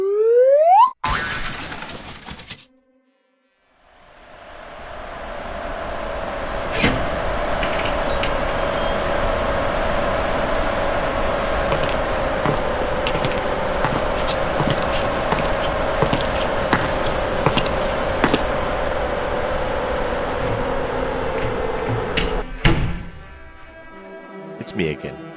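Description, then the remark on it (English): A car engine drones steadily with a held hum for about twenty seconds, then a sudden loud crash of impacts and clattering debris cuts it off as the car runs off the road and is wrecked, followed by scattered rattles. “Not reckless with a W, on account that, you know, you did wreck your car.”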